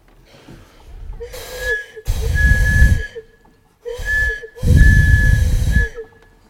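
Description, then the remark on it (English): A train whistle from a train leaving Warsaw sounds in four hissing blasts: a short one, then a longer one, a pause, another short blast and a final long one, each with a steady shrill tone over breathy steam. “The sound of the train as I sit by the window watching the live film go by.”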